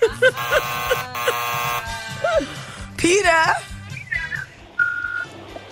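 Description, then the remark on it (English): A gate buzzer gives a harsh, steady electric buzz for about a second and a half, then stops, and voices talk over a few shorter tonal bleeps. “No, the buzzer at the gate.”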